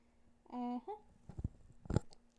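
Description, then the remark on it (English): A short hummed tone gives way to a couple of quiet sips and gulps, soft wet bursts spaced about half a second apart with no talking. “Let me take a sip.”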